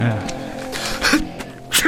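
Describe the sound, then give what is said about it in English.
A pair of short, sharp sneezes burst out, the second following quickly after the first, with voices murmuring in the background. “God bless you.”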